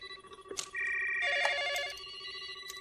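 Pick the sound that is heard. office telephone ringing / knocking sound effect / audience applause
office telephone ringing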